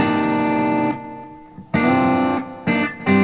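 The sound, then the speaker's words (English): A big, clean electric guitar rings out in full strummed chords with reverb from one of four chosen reverb presets, followed by several more chord hits that sustain and decay, with no one talking. “The reverb has four different that I've chosen. So it's switching with this. Yeah. So I can have a nice big clean.”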